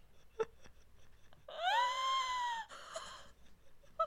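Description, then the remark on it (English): A person imitates a long, strained, wheezing gasp that rises in pitch, followed by a shorter breathy catch. It's fairly loud, with a brief sharp sound just before it. “He was also married twice, courting his second wife between gasps, and fathered 8 children.”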